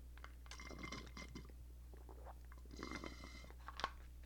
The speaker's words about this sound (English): But first, I'm going to take a brief moment to have a sip of water. And I'm not going to pause the stream or anything.